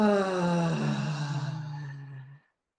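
A single long, voiced exhale after a breath held at the top, like a deep sighing groan that slides slightly downward in pitch, heard alone for a couple of seconds before stopping abruptly.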